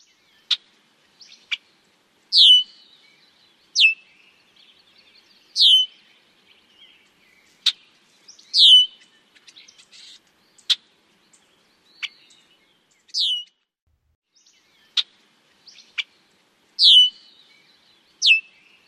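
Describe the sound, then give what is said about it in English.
A series of red-winged blackbird calls in several distinct types: sharp, short chucks and clicks alternating with high, down-slurred whistled notes, repeating clearly with quiet gaps between them. “I'm going to play a few different call types, and then we will break them down and talk about a few of the call types.”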